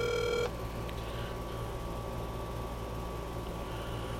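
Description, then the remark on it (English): A telephone call being placed: a short burst of dialing tones, then a steady, thin electronic line tone holding over a low background hum, with no one speaking. “So let's see if we can't get him on the phone.”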